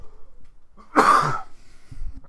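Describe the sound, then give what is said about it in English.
A single harsh cough, part of a cough that won't go away, bursts out loud and raspy for about half a second, followed by quiet low rumbling and a faint breath. “That cough just won't go away.”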